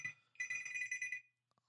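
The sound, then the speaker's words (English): A mobile phone rings with a single bright, high-pitched electronic trill lasting under a second, followed by a couple of faint short beeps, with no one talking. “Is that your phone? Yes, it is.”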